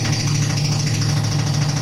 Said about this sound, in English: That is a jackhammer outside the window of the studio. Great. As you can imagine, not tenable.